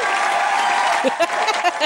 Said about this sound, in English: I'll give my own applause.